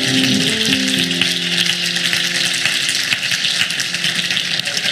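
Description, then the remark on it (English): A church audience claps to the Lord in praise: dense, steady clapping, a loud continuous crackle lasting the whole time, with a few low sustained musical tones sounding underneath at the start. “Now put your hands together one more time and clap them to the Lord in praise.”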